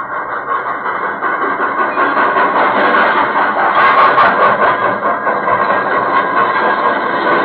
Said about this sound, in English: This story properly begins on Christmas night, 1918, 19 years ago. A leave train was just coming to a halt in the station at Villefranche.